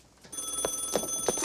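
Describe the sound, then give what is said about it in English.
A telephone in a film scene rings with a steady electronic trill, pulsing in quick repeated bursts at moderate volume, with no voices over it. “the whole thing where like he calls her twice and he says like, hello.”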